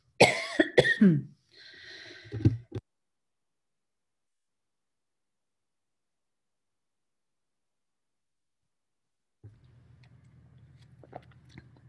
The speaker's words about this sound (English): Sorry, had to do a little cough there. So I shut my microphone off.